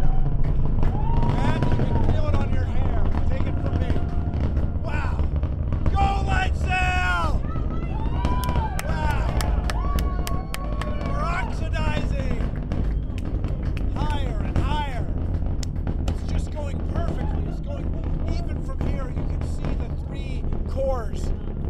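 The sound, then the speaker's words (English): A deep, continuous roar from a rocket launch about 4 miles away, carrying a light sail, rumbles steadily throughout with a rough, crackling texture from the engines' diamond shocks, while people's excited voices rise and fall over it. “And those are the diamond shocks made the pa-pa-pa-pa-pa.”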